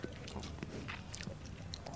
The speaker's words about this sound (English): we're taking a sip. …'s doing is he's puckering his lips. He's bringing a little retro nasal, sucking in a little air.